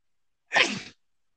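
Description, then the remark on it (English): A single sharp sneeze, fairly loud, bursting out suddenly and tailing off within half a second, with silence before and after. “Bless you.”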